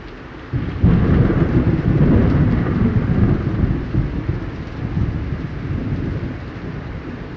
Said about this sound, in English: Please stop the storm.